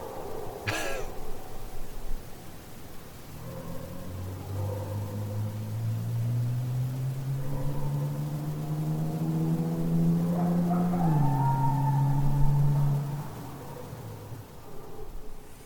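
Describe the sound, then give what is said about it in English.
An engine hums steadily and slowly revs higher for several seconds before dropping back, heard alone after a brief sharp knock at the start. “I mean, I think that sounds like an engine revving to me, though.”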